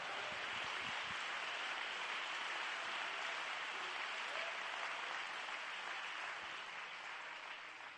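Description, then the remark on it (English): An audience claps their hands unto the Lord during a sermon, in sustained, dense applause, a steady wash of many overlapping claps that holds for several seconds and then begins to taper off at the end. “If you believe that, you ought to clap your hands unto the Lord, because the Lord is good and the word is true.”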